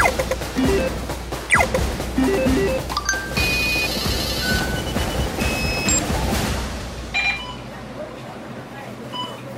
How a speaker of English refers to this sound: The last beeps were recorded here at the bus interchange at Harbourfront MRT, postcode 098886.